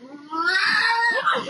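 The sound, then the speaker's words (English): A bobcat lets out a single drawn-out, wavering growl that rises into an angry yowl, loud, with no voices around it, by a car outside a house garage in North Carolina. “I knew it was cat because I know what a cat sounds like, but it sounded like a very angry cat.”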